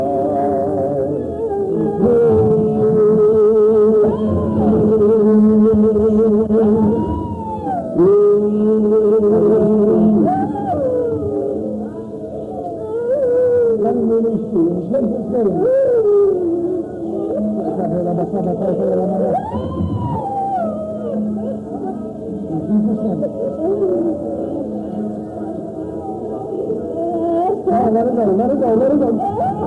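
A girl screams and wails over and over, long sustained cries that bend and swoop in pitch, loud and nearly unbroken with a low droning murmur underneath.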